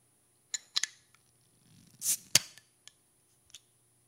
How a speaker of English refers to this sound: So I stopped by the store, and I picked up an Abita Turbodog. I'm going to open the bottle now.